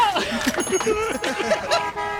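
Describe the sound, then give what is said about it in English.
A voice makes a string of short, nasal honking sounds with the mouth, imitating a car horn, several quick bursts in a row, fairly loud, with some background chatter. “I'm honking with my mouth because I'm on rollies.”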